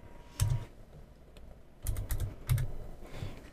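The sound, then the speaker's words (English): A handful of sharp, clicky keystrokes on a computer keyboard, fairly quiet, arriving in short irregular bursts with brief pauses between them and no voices. “If I'm typing it in and it's autofilling buffalo sentence...”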